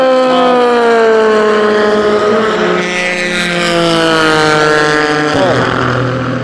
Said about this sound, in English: That dirty one, that was the Ford GT, of course.